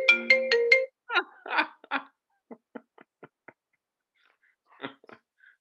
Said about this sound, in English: No, it was somebody. I thought I turned my phone off.